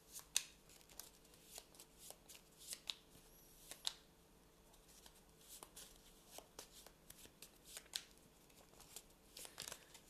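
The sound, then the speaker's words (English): Quiet shuffling of a card game's discard pile into its encounter deck: repeated crisp riffles and soft slaps of the cards, with irregular bursts of papery clicks over about ten seconds and no voices. “Now I need to shuffle the discard pile into the encounter deck. So I'm just doing that now.”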